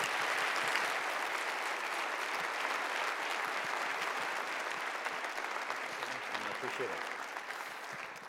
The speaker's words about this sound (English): And again, they've applauded before you've said a word. No pressure at all.